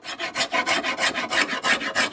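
In Blacksburg, a hand tool rasps steadily across wood while carving a paddle: about seven harsh, scratchy strokes in an even back-and-forth rhythm, with no voices.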